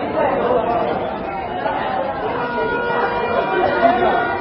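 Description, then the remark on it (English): A busy street in the Johannesburg CBD, Gauteng, with hooting taxis, pedestrians and street hawkers: a steady, dense wash of overlapping crowd chatter and street bustle that stays fairly loud and even for the whole stretch, with no single voice standing out. “The Johannesburg CBD, the hive of activity with hooting taxis, pedestrians and street hawkers.”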